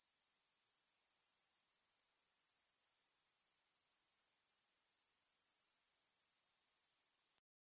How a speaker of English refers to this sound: the original Havana recording from 60 Minutes with everything below 10 kilohertz completely removed from the frequency spectrum